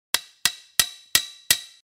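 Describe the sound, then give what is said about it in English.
Five sharp, ringing hammer blows drive nails into an old wooden sign on a fence post by a farm's front gate, in a steady, quick rhythm, each with a brief metallic ring that fades before the next. Fairly loud, with no voices. “nails puckered into the corner of his mouth, furiously hammering with his hoof at what appears to be an old sign on a fence post next to the entrance.”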